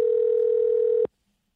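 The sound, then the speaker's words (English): A single steady electronic ringing tone of a phone call being placed to Will Forte sounds for about a second, clear and fairly loud, then cuts off abruptly into silence. No one speaks. “We're going to try calling Will Forte.”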